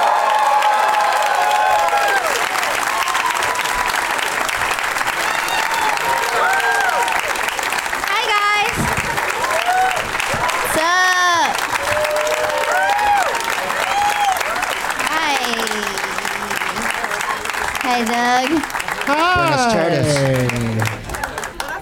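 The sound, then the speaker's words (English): A crowd in San Francisco applauds loudly and steadily for about twenty seconds as comedians Chad Opitz, Amy Miller, and Greg Proops are introduced, the dense clapping threaded with scattered whoops and high cheering voices that rise and fall throughout. “Please give it up for my friends Chad Opitz, Amy Miller, and Greg Proops.”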